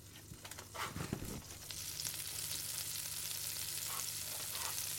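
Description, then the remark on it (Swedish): Butter sizzling in a frying pan, ready for bread to be added, a steady bright hiss that swells after a few clinks and scrapes at the start, then crackles evenly with occasional small pops. “Och hör ni det välbekanta ljudet av smör som fräser i en panna.”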